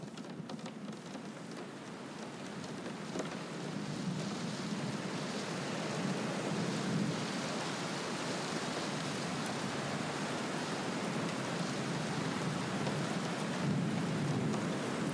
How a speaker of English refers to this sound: I hear rain against the window. I love the sound of rain. It's percussion.